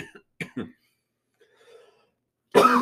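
A few short, sharp coughs from a person with a torn, sore throat come in quick succession, then a brief quiet murmur, before a louder burst of voice breaks in at the end.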